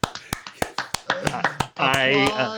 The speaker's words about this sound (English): Applause.